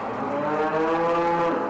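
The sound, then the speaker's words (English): A dairy cow, one of 2,000 huddled in long pens at a dairy farm in Bridport, Vermont, lets out a long, loud moo on a cold morning at 5 o'clock. The moo holds steady for nearly two seconds, with a rich low harmonic tone and no voices. “Blue Spruce Dairy Farm in Bridport, Vermont, is home to 2,000 of these vocal ladies.”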